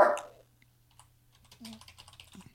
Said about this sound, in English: I hear keys tapping. Are you putting this in an anagram? No. Letter mover? I'm just putting it on Notepad.